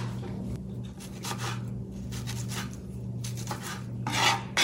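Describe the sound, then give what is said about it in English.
A knife works through washed tomatoes on a cutting board, chopping them into small pieces for a summer dish, making a series of soft, rasping strokes in an uneven rhythm over a steady low background hum. “Right now she's chopping the tomatoes.”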